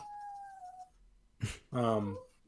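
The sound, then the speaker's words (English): A dog whines in one thin, high, steady note that drifts slightly downward for about a second, followed by a short rustle and a person's voice speaking briefly. “I'm watching my mom's dog. He was whining at me for some reason.”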